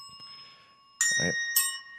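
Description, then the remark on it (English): Small bells ring out, two bright strikes about half a second apart, each leaving a sustained metallic shimmer, with a faint low murmur underneath. “And I got to get these bells a little closer.”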